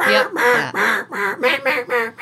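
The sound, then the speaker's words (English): A voice imitates a hen mallard's quacking from the stomach, a rapid run of about seven loud, nasal quacks in a descending rhythm, with no other sounds. “They get punched in the stomach and that hen mallard goes”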